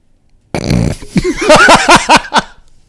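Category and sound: human body sound, fart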